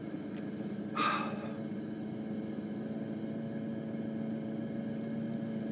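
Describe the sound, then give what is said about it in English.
A car engine idles with a steady, low rumble while pausing on the brow of a hill, the driver keeping the revs up, briefly interrupted near the start by a short, sharp burst of higher-pitched noise. “I'm having to keep the revs up. Now, I failed to keep the revs up.”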